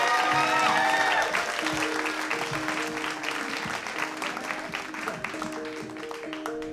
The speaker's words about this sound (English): Okay, come on, keep clapping. It makes him feel good.